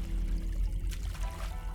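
Water sloshes and splashes, with a couple of brief bursts of splashing over a steady low rumble, as a woman paddles farther into the water.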